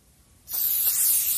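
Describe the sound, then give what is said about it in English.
After a brief quiet moment, aerosol sanitizer spray cans burst into a loud, steady hiss that continues without pause to the end, as a man sprays the sanitizer on himself. “Logic Lad turns the spray sanitizers on himself and uses the cans to their extent.”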